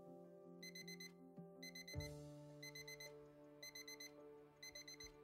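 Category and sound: signal or alarm, phone alarm ringing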